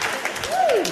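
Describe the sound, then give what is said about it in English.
An audience claps steadily in a dense patter, cheering the idea of sex, while a single voiced whoop or whistle rises then slides down partway through, all at a lively, consistent level. “Yeah, let's cheer the idea of sex.”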